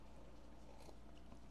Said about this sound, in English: So I want to bump up my immune system right now. So we are sipping on immunity. I'm going to cheers you right now and take a sip.